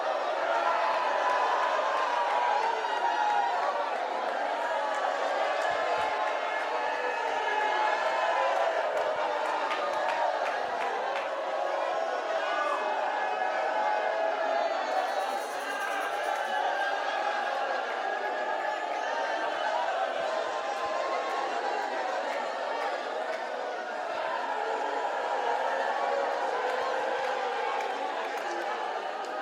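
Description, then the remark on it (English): An audience shouts and cheers together in a dense, continuous roar of many voices, holding steady and loud for the full half minute with no pauses. “You need to shout over the victory of your family.”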